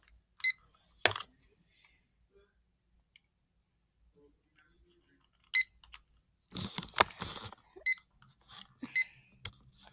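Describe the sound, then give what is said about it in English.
Clicks and rummaging clatter, then short electronic beeps and button presses as a small kitchen timer is picked up and set to 13 minutes, with quiet gaps between bursts and no talking. “Now, where did I put that pesky timer?”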